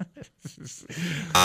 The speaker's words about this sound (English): Ready? Got the buzzer?